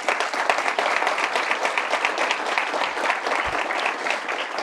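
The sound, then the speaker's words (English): Steady applause from a sizable audience welcoming panelists, a dense, even wash of many hands clapping at once, sustained and fairly loud throughout without any voices on top. “So please give them a warm round of applause to welcome them.”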